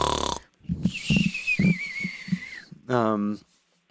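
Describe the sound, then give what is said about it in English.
A voice imitates the raspy, mechanical breathing of Darth Vader's respirator: wheezy, rattling inhales and exhales with a thin whistling tone, fairly loud, bracketed by brief voiced sounds. “What does he sound like?”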